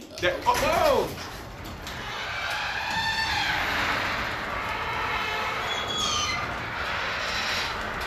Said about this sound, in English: That is the garage door opening right now.